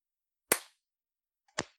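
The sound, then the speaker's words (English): Two sharp hand claps about a second apart, made as a sync clap, each a crisp, loud snap with a short ringing tail, with silence around them and no voices. “I gotta do another clap.”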